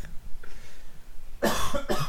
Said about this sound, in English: I'm coughing at the injustice. But injustice makes you sick.